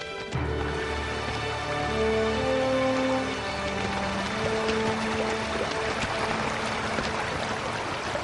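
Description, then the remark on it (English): Rushing river water churns steadily throughout, a dense continuous roar with no pauses, while sustained low musical tones play underneath. “How can we cross this river safely? Please, God, give me an answer. The water's too fast.”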